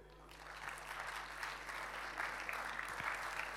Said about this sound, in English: How about we give them all another great big round of applause? Isn't it great to have people with expertise sharing with us here tonight?